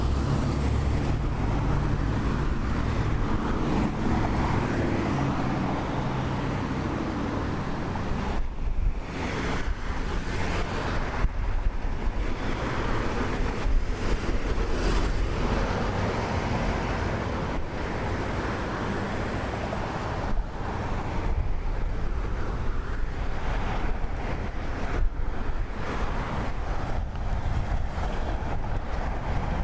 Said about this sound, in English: All kinds of traffic lights and pedestrian signals, and you'll undoubtedly hear some of the automobile traffic.